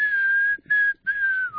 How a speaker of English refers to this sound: Can I tell you how many times I've been in an airport and I'm tempted to whistle this while I'm in the waiting area just to see if anybody else knows what I'm doing?